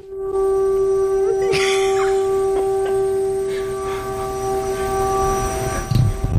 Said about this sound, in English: So that noise is a siren. Sounds like an air raid siren.